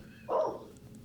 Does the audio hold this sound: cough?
no